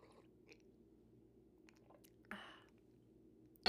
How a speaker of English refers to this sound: So we're drinking coffee right now, taking a sip. If you hate the sound, please ignore it. I hate this sound, so I'm going to drive myself insane. But for the vibes, for the ASMR.